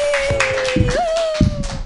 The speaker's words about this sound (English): Your next comedian, what a funny lady. Clap your hands together for